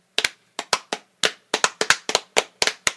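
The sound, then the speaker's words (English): Sharp hand claps, about fifteen in three seconds, in a slightly uneven rhythm, crisp and fairly loud with no talking, sounding like one or two people clapping rather than a crowd. “Or did you actually deserve that clap?”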